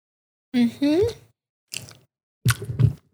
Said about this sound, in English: Don't do ASMR with your chewing.